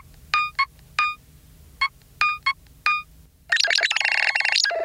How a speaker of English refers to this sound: Which extends to the ringtones too, right? Yeah. The ringtones, I think, are a big part of the kind of identity, I think, of the phone. Is they're very kind of retro gaming console sounding.